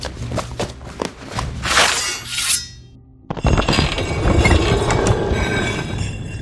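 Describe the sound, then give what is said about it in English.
Six heavy hidden doors grind and slide down to the ground, a scraping, rumbling rasp that pauses briefly and then returns louder and sustained, like stone panels dragging. “The skeletons were just each hiding behind one of the 6 hidden doors sliding to the ground.”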